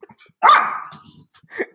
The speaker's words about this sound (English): your dog Britt in the background let out a growl